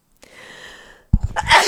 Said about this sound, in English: I feel a sneeze coming on.